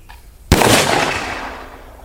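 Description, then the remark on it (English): A single loud shotgun blast cracks out after a moment of near silence, then its broad, rumbling tail slowly fades away. No one speaks. “You're like freaking doing like skeet shooting or something.”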